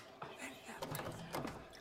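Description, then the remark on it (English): A water cooler gurgles, a short burst of bubbling glugs and soft knocks over about two seconds, fairly faint and heard on its own. “The water cooler.”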